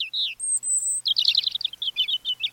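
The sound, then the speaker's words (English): A European robin, a migratory songbird, sings alone and clear: a thin high whistle, a sustained pure note, then a quick run of rippling, tumbling high trills. “While a bird's eye view lets a migratory songbird like this European robin keep track of important landmarks along its route, a special protein in its eyes might let it see Earth's magnetic field.”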